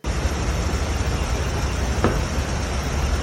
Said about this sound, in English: That knock is very loud, though. It is, and it appears on all three devices.